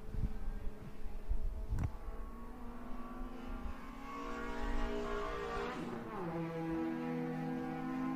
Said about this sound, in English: What a finish, folks. We'll get you a full field rundown here as soon as all of the cars take the checkered flag.